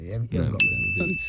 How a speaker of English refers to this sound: Have you got right and wrong noises Netflix for this? Just on the phone. Yes, we do. Okay, well, if it's a right answer, we hear this.